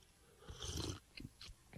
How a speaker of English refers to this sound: I'm going to take a sip and tell you.